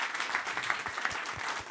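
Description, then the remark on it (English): A crowd applauds for Shot, a caller on the show, clapping steadily: a dense wash of many hands at an even, moderate loudness with no voices on top. “Round of applause for Shot.”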